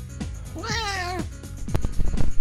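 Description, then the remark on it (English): A single drawn-out meow from a 17-year-old cat, loud, with a wavering, slightly rough tone, followed by soft thumps and rustling handling noises. “This next cat is Augustus. He's 17 years old. I've had him for a long time. Let's see if we can't get him to talk.”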